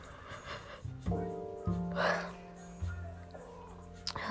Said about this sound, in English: Because I know y'all hear me yawning through the phone.